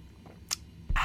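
A quick sip of water: a short wet slurp, then a louder gulp or swallow, with no talking around it.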